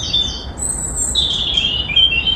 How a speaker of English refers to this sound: As you've just heard, birdsong is as clear today as it was in April 2020. There's a little more traffic noise, but research shows the past year has been good for the environment.